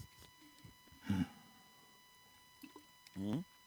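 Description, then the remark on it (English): Two short bursts of water, not cold, pouring into a glass, each a brief gurgling splash with a rising tone, separated by a quiet pause, fairly soft. “Whoop, I'm taking your water. Is it cold? It's not cold.”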